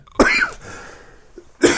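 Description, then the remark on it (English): Two harsh coughs from a person getting over a cough, one right at the start and another about a second and a half later, with a quiet pause between them and no talking. “Forgive me. I'm getting over a cough.”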